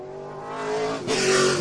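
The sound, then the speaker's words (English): The engine of race car number 36 revs hard and steadily, with a brief dip before climbing again into a loud, bright roar with a faint tire squeal, heating up its tires before a race at Penticton. “I think that's a quick way to heat up those tires on that 36 machine.”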